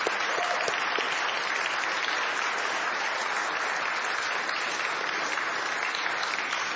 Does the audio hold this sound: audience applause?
yes